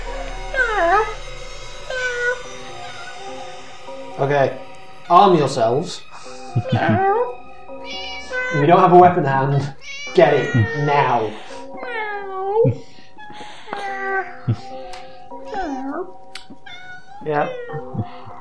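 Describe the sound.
Loud, drawn-out cat yowls and meows rise and fall in repeated bursts, wavering and screeching, while a person speaks over the start of the commotion.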